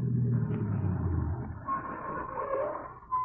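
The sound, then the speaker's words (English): A car engine rumbles outside, its low drone shifting in pitch as the vehicle approaches, with a faint higher whine rising over the steady rumble toward the end. “That car. Yes, I heard it.”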